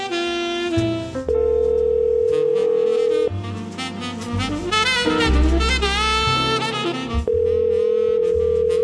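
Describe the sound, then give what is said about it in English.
A phone line rings with steady, sustained tones, first early on and again near the end, broken up by a busy stretch of warbling, tuneful sound in between. No one speaks. “Hi, you reached the voicemail box of John”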